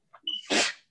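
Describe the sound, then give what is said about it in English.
A single sharp sneeze: a brief quick intake of breath followed by a loud, explosive burst of air that fades out within a second. “Bless you.”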